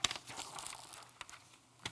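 Paper rustling and crinkling as it is handed over and handled during a child dedication, with a sharp crackle at the start and a few brief crisp bursts after, fairly quiet and without talk.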